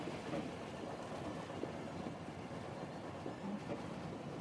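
A steady, continuous rumble of a train rolling along its tracks, a broad wash of noise that holds an even loudness throughout with no voices.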